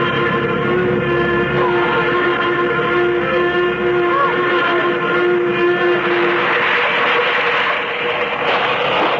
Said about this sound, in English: Suddenly, the plane lurched sharply. There was a loud rushing sound in my ears, and I realized that we were coming down. But fast, much too fast.